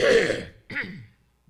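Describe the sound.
Exaggerated fake coughing: two forced, throaty bursts, a harsh raspy one and then a shorter voiced one, performed by a person, with no talking around them.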